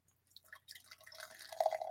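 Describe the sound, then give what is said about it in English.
Big Gay Ale, a very pale beer with edible glitter, is poured after a swirl into a glass with a fizzy, splashing gurgle that builds steadily, its pitch rising as the glass fills and a white, foamy head forms. The sound is fairly quiet, with no talking. “You gave it a swirl and the pour.”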